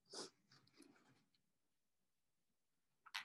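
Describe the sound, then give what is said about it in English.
Soft crinkling and rustling of paper tissue being fetched for an itchy nose, a sharper burst at the start followed by lighter scattered handling, a quiet pause, then another brief crinkle at the end. No talking. “I'm just going to get paper because my nose is itchy.”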